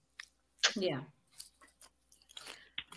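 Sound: crunching potato chips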